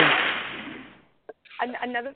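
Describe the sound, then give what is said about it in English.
A sharp, loud whip crack sound effect played from a soundboard snaps out and fades away over about a second, followed by a quick click and then a person starting to talk. “Okay, yeah, I want my actual whip noise. I have a whip noise on the soundboard,”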